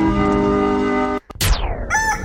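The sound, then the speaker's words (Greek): A rooster crows loudly, a long harmonic call that holds steady, breaks briefly, then rises and trails off into a second strained note. No one speaks. “μέλισσες και κραγιόν και ο κόκορας στο Sok FM Morning Show”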